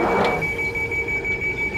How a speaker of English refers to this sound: so I can, every time we record the show, I can turn on the switch like I'm doing now, and that it turns on the vacuum, which sucks up the... there.